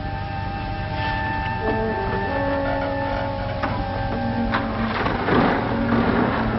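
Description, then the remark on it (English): A jeep engine runs steadily, a low mechanical rumble with a whining hum, swelling briefly louder near the end as it revs. No voices are heard. “Keep them covered and get into the Jeep.”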